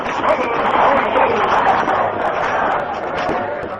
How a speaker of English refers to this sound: Stage heading south from New Braunfels drew to a stop at the hotel in San Antonio.